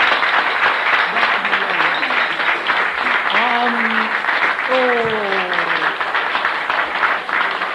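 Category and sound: crowd, audience clapping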